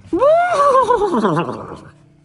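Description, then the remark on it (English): A single loud horse whinny, rising sharply then trembling downward in a quavering, shaky neigh that trails off after about two seconds, with no one talking. “Can you neigh like a horse?”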